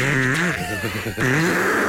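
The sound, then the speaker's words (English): A loud, buzzy raspberry is blown on a tummy, a voiced, fluttering blurt with a wobbling pitch that runs for about two seconds with a brief dip near the end. “blew a raspberry on his godlike tummy.”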